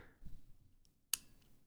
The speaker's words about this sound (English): Isn't that clicky? It's so very satisfying. Clicky. So what definitely that is that's that little ribbed hump thing clicking over, and you can hear it as I'll push down this key.